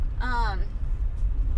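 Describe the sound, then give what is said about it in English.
Steady low rumble of road noise inside a rental car driving from Prescott to Phoenix, continuous throughout, with a short burst of a voice speaking near the start. “And now driving back from Prescott to Phoenix to go catch an airplane.”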